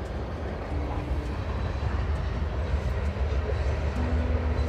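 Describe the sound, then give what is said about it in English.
A passing train, heard through an open front door along with birds, gives off a steady, heavy low rumble with a faint droning hum running through it, continuous and fairly loud for the whole stretch, with no voices. “are sitting here looking outside, listening to the birds, listening to the beautiful train.”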